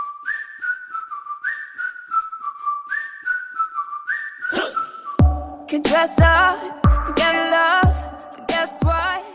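A bright whistled melody of short rising and falling phrases opens over light backing, then heavy drums and deep bass crash in halfway through, turning it into a loud, punchy pop track.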